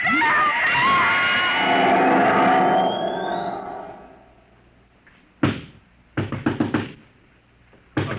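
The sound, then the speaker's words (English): A loud, shrill wailing swell fades away, then the manager pounds heavily on the door: one hard blow, a short pause, and a quick, loud burst of four or five thuds. “He'll break down our door in a minute.”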